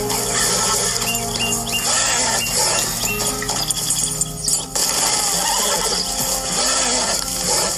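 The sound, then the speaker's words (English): A horse whinnies as it spontaneously bursts into flames because of a video game bug, amid a dense, noisy wash of sound with crackling textures, loud and continuous, with a brief dip in the middle before the commotion resumes. “His horse spontaneously combusts. And so did the other horse.”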